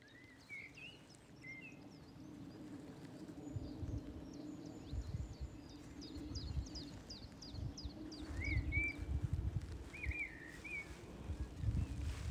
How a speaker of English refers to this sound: This is very much the calm after the storm. Wonderful bird song.